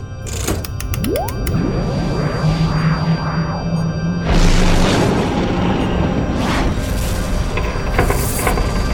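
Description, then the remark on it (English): A loud sci-fi cannon blast from a warship's forward weapon cannons strikes a spaceship with a booming impact, a passing energy-beam shot causing minor damage, followed by sweeping, warbling electronic tones and a sustained rumbling roar that fills the rest of the scene. “The ship fired on us. We've got some damage.”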